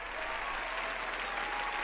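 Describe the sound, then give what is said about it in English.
A large audience applauds and cheers in a steady, dense wash of clapping that holds at an even level for the whole moment, full, with no one speaking over it. “Isn't that nice? They love you. They never cheer for me.”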